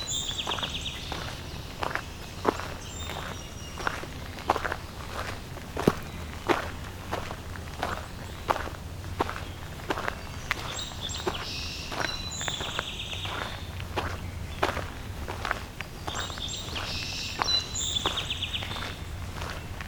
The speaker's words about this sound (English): Some song sparrow.